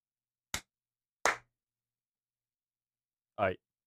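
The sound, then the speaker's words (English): Three separate, fairly loud hand claps with uneven gaps between them, the last after a longer pause, each a sharp crack with silence in between and no talking. “Here, let me clap.”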